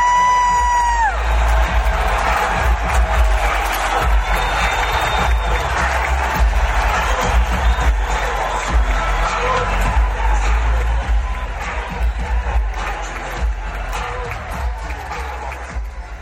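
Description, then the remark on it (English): Raiders fans in a stadium roar and cheer at a game against the San Francisco 49ers in a dense, unbroken wall of noise that stays loud throughout, with shrill whistles piercing through early on and scattered yells and whoops rising from the din. “The fans were crazed in the stadium the roar could be heard miles away.”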